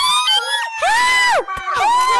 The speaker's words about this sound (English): The people who had stopped screaming when Godzilla began speaking started shouting again.